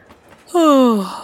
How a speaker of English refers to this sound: And then Leena started to feel sleepy. She yawned.